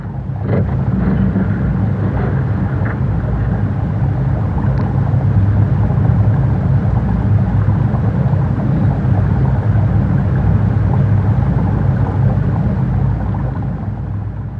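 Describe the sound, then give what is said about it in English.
A deep, steady rumbling drone of water flowing beneath glacier ice and resonating in the ice, continuous at a constant loudness, with a few faint crackles early on as a larger chunk of ice breaks off, and no voices. “And I just recorded this drone that is kind of created by the flow of the water that kind of resonates in the ice.”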